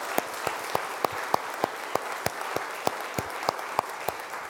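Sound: audience applauding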